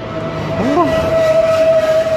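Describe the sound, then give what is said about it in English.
A big truck roars past close by, a loud, steady rumble carrying a sustained whining tone throughout, with a brief wavering, horn-like pitch sweep early on. No one speaks. “Big truck. Whoa, that was close.”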